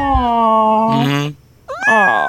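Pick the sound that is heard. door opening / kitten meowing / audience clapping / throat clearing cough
kitten meowing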